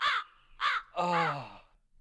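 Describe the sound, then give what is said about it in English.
A crow caws three times: two short, harsh calls followed by a longer, drawn-out caw, loud and clear with no one talking. “Oh, I see what you're doing. Yeah, this will be another Corny Crow segment.”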